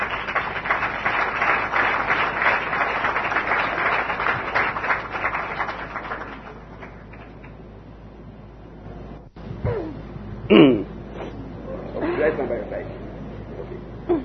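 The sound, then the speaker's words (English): An audience claps steadily for about six seconds for a young woman from the evangelism group, a dense crackling patter that gradually thins out, followed by a person speaking with scattered murmurs. “She did a good job. She's, clap for her.”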